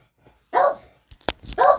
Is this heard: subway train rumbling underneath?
no